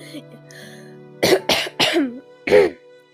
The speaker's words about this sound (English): I'm gonna cough real quick, so.